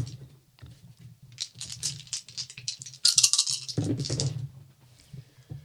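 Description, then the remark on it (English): Dice are rolled for a tabletop role-playing game, clattering and rattling in a burst of sharp clicks, with a louder tumble around the middle, over a low steady hum. “Four dice of performing. Right.”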